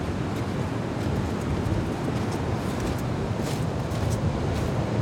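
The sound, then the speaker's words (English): Loud, steady roar of white surf washing onto a beach, a continuous broad rushing with no clear individual breaks, mixed with gusty wind noise on the microphone. “And I mean, it's just so impressive, this white surf coming at us here.”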